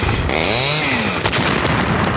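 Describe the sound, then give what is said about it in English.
A loud small two-stroke lawnmower engine revs with a whining pitch that climbs and then falls, over constant gritty noise, followed by a brief clattering thud; nobody speaks. “Watch out for that lawnmower!”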